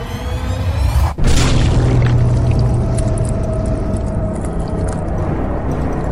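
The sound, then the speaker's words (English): A sudden loud crushing impact, a tiefling crushed between the palms of a giant, gives way to a long, wet squelching and splattering of blood over a low rumble, steady and fairly loud to the end, with no voices. “There's a crunch and a squelch and a splattering of blood as this tiefling vanishes between the palms of this giant.”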